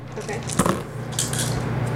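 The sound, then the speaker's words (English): Dice clatter across a hard tabletop in two quick bursts of clicking and tumbling, moderately loud, over a steady low background hum. “You should stop using my dice, man.”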